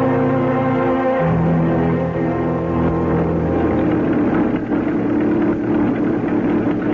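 A car engine runs steadily for the whole stretch as a woman drives the car, a loud, continuous low rumble with a droning harmonic hum and slight shifts in pitch, with no voices over it.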